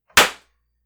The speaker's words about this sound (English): Wait. Was that explosion caused by my drink? Let me spill some.